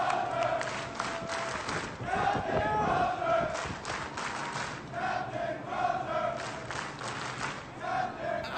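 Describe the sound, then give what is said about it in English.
A large crowd of soldiers cheers and shouts together in sustained rising waves, loud, with yells overlapping throughout and no clear speech, cheering for their commander as he walks down alone after being fired. “As he walks down by himself after being fired for trying to save their lives, they're cheering for their hero that led them.”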